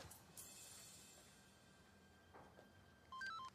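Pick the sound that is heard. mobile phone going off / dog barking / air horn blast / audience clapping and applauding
mobile phone going off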